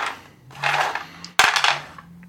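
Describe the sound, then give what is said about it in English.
Three six-sided dice rattle and clatter across a hard surface in two bursts as they are rolled for a game's starting luck score, a sharp knock in the middle, fairly loud, with no voices. “I'm going to roll 3 six-sided dice and multiply that by 5 to get my beginning luck.”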